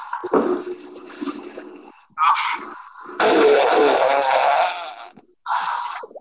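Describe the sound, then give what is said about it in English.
Four loud, raspy fart sounds in a row, a long sputtering one, a short blurt, a drawn-out wet rumble, then a brief final toot, with no talking. “Fart jokes are the best.”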